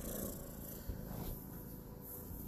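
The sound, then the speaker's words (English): A female cat purring softly and steadily, a low continuous rumble with a gentle pulsing texture that carries on without pause and with no voices. “Can y'all hear her purring?”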